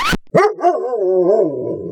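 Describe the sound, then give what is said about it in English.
A dog in an office gives one sharp bark, then a drawn-out, wavering whine-like howl that holds for over a second. No one speaks. “Oh, who doesn't love an office dog?”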